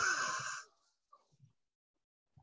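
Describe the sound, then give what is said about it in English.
A loud, sharp intake of breath through the nose, drawn from the diaphragm during a breathing exercise, lasts just over half a second, then fades into near silence with a few faint soft bumps. “Breathe it in to the top of your head, as I say, and then back out.”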